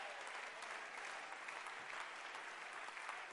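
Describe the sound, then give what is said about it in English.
An audience claps their hands together in a steady, dense burst of applause that holds at an even, fairly loud level throughout, with no voices standing out. “I want you to clap your hands right now.”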